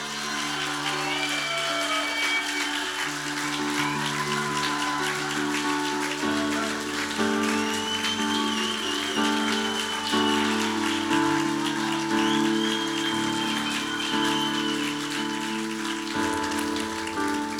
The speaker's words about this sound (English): So I'd like to invite you while, and I'm going to read out his nomination while he's up here, but I want you to honour and applaud